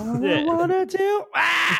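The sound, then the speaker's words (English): A person imitates a crow singing, with a harsh, nasal, cawing voice that wavers up and down through a strained melody before ending in a loud, raspy squawk. “Imagine a bird singing, a crow singing that song.”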